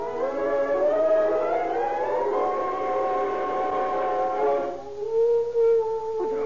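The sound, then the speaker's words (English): A dog howls in one long, wavering note that slowly rises in pitch, then breaks off and resumes lower and softer. No voices, just the steady mournful howl. “A dog howling.”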